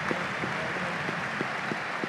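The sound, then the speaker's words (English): A stadium crowd gives a standing ovation at a Bradford City versus Bury football match, with no Bury fans clapping, a dense wash of clapping holding the same level throughout, with a few regular, evenly spaced claps standing out. No one speaks. “Standing ovation for Jim.”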